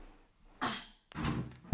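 A small ball is shot from a chair at a mini basketball hoop, clattering against the backboard and rim in a few quick knocks and rattles, with no one speaking.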